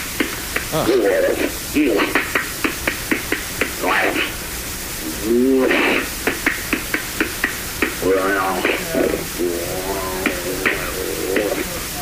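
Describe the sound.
An alleged Bigfoot knocking recording: rapid, evenly spaced knocks, sharp wooden raps repeating through a heavy hiss of tape noise, with muffled voices and warbling calls rising between them on a rough, distorted recording.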